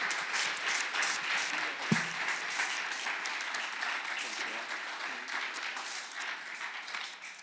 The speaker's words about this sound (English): Can we give my dad a round of applause real quick?